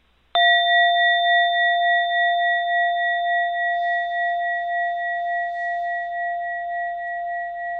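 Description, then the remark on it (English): A single small bell is struck once and rings out with a clear, steady tone that slowly fades over several seconds, heard alone with no voices. “There's the small bell.”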